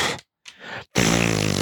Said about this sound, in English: Fart noise.